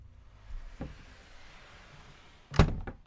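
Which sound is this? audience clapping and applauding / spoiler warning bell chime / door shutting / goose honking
door shutting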